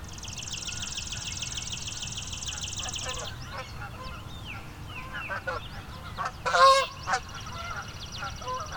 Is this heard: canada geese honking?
yes